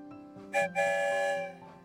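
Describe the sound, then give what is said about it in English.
A train whistle sounds two blasts, a short one followed by a longer sustained chord, loud, with a faint rumbling underneath and no talking. “The story train is rolling on, past the big red barn and back to the train station.”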